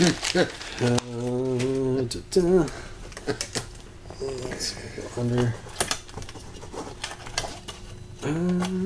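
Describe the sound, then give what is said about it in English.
Thick, heavy-duty zip ties from Home Depot ratchet tight around a guitar pedalboard in quick bursts of rapid clicking, a dry zipping rattle that repeats several times while a man talks intermittently over it. “Let's get this thing zip tied down.”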